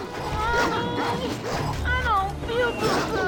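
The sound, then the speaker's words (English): A pack of wild dogs snarl and yelp in a frantic scuffle as they charge, with sharp rising whines and growls overlapping continuously for a few seconds, loud and chaotic. “It's a pack of wild dogs, and they charge immediately.”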